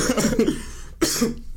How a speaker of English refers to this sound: You're coughing a lot today on the pod. Yes, I am.